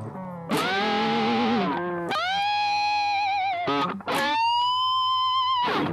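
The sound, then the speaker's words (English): An electric guitar with heavy effects mimics a horse's neigh, loud sliding and warbling bends in several bursts that rise, waver and fall like a whinny, with no voices. “That's a horse.”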